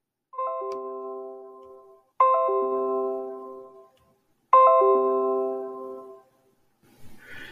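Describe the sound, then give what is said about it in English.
Three identical device notification chimes sound about two seconds apart, each a quick descending cascade of bright bell-like tones that rings out and fades, followed by a brief soft rustle. “And right now we're having some technical difficulties with a bunch of notifications.”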